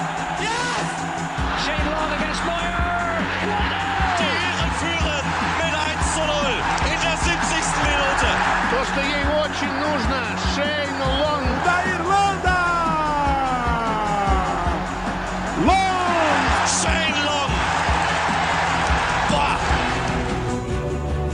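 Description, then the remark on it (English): A dense, steady roar of a crowd, with many overlapping voices cheering, sharp claps and rising whistle-like tones cutting through, holding at a loud level throughout. “Congratulations, take the applause of that crowd.”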